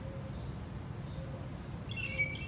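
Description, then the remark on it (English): Over a steady low rumble, birds call in a short burst of high, bright chirps near the end, with a few faint tones earlier. No one speaks. “See, there they go again.”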